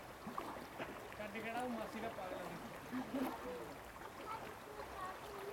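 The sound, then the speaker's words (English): Steady rushing water fills the scene, a continuous broad wash of sound, with indistinct voices murmuring faintly in the background throughout. “You can hear the noise of the voices, the noise of the water.”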